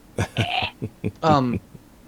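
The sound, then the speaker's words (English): A handful of short, dry coughs from a dry throat of someone getting over a cold come in quick succession, followed by a longer, raspy voiced throat-clearing sound before trailing off. “I'm just like coughing a little bit because my throat's dry.”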